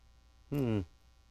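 A faint, steady electrical mains hum, caused by a cable shielding problem, drones through the whole recording, briefly overlaid by a short voiced vocal sound in the middle.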